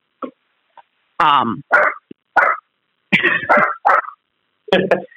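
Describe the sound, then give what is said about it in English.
A dog barks several times in short, sharp bursts, fairly loud, with brief pauses between the yelping barks and no talking underneath. “We've got a dog.”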